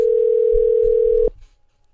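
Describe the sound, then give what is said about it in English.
A steady, loud telephone tone hums continuously for just over a second while a phone call is being placed, then cuts off abruptly, leaving a faint low rumble behind. “So we're going to get her on the line and see if we can't figure out why she did it and what she should do in the future.”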